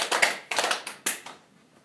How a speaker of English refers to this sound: Inhale, breathe in. Clap three times.